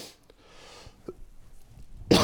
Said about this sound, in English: I'm always scared when I'm wearing one of these lapel mics. I don't want to like blow out your eardrums coughing into it. Excuse me.